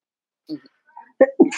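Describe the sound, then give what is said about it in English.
A single sneeze from seasonal allergies: a few quick breathy intakes build up, then a sharp, loud burst that trails off into a hissy exhale. “Sorry, it's bad time of year for allergies.”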